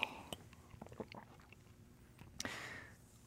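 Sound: sipping water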